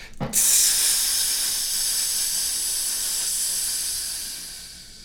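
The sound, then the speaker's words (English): A voice makes one long, steady hissing sound, airy and bright, held for about four seconds before it tapers off. It starts with a short intake or click, and nothing else is heard. “Then make a long hissing sound.”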